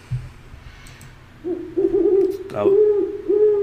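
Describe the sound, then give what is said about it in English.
A pet bird calls with low, hooting, warbling notes that start after a short pause and carry on loudly in a long, wavering stream, with no one talking. “I've made a real connection with this bird.”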